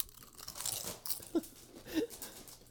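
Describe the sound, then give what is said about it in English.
Crisp crunching of a thick, wide, heavily salted tortilla chip being bitten and chewed, with a sharp crackly burst followed by a couple of softer chomps, no talking. “Dude, but that crunch oh, look at that.”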